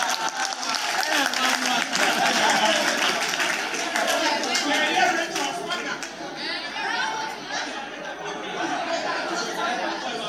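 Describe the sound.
An audience in church claps together during a pastor's preaching, a dense, steady patter over lively crowd chatter; after several seconds the clapping thins out, leaving mostly murmuring voices.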